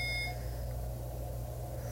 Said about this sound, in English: And ignore the alarm if you can, because, again, I didn't hear it. Okay. If I did, it would have freaked me out, I'm sure.